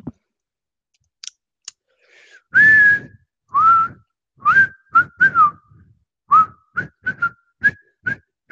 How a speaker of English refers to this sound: I don't know why I'm whistling a bit